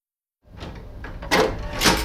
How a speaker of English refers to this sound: The entry hatch opens and two fabric-swathed Cinchoro battlesuits stand outside.